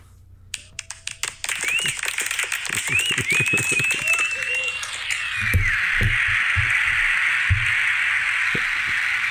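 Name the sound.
extended applause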